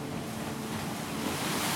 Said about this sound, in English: Is that water coming?